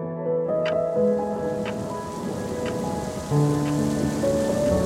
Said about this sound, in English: Just as he had suspected, it had poured. There was thunder, lightning.